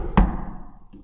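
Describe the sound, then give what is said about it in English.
A single solid knock on a door, loud, with a short resonant thud that fades quickly into a quiet background; a much fainter tap follows near the end. “And the others show up and they're like, I didn't make it, I'm late. And they knock on the door.”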